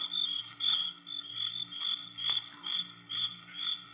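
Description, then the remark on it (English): Crickets shrill at night in a dense, continuous chorus, a high steady trill swelling in regular pulses about twice a second, loud with no voices. “But there wasn't a sound except the crickets. Shrilling so loudly, the noise seemed to beat inside my brain.”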